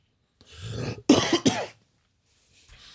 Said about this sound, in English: Mind the cough.